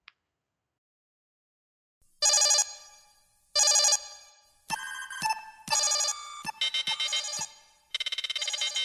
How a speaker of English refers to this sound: with that alarm, it's an incoming threat analysis.